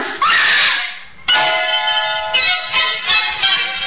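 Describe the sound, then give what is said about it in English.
A woman, a mother, screams loudly on finding a beheaded young woman on a bloodstained bed in a single room: a rising shriek followed after a brief break by a long, strained, wavering cry that holds for several seconds. No talking is heard. “The mother had reason to scream.”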